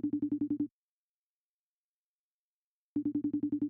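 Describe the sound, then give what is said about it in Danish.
A phone ringback tone while calling a man who is an expert on gadgets: a quick burst of rapid pulsed tones, a pause of about two seconds, then another identical burst, moderately loud and clear with no voices. “Skal vi ikke prøve at ringe til manden, der ved alt om gadgets? Ah, vi ringer selvfølgelig til David.”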